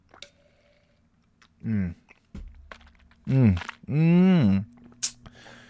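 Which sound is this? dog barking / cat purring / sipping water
sipping water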